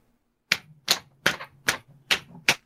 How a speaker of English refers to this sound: I'm slapping my sides. I'm so happy.